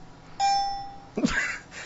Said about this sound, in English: That was weak. That was weak. My buzzer is pretty good. Yeah, you have a better buzzer, but your dinger is kind of lame.